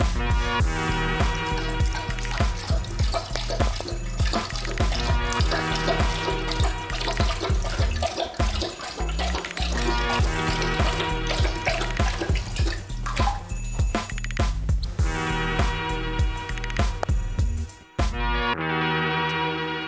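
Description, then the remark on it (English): A Doberman dog laps water noisily from a toilet bowl, a steady run of wet slurping and splashing that carries on for most of the stretch before stopping abruptly near the end. “Yeah, that's one of my Dobermans. Now, we've trained him not to drink out of the toilet.”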